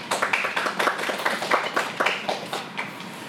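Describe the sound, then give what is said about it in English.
An audience at a competition claps steadily for a few seconds as a competitor's name is called, a dense patter of many hands with sharp individual slaps standing out, holding a fairly even loudness throughout. “Yeah, you'll clap, go ahead.”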